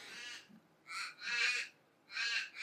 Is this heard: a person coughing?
no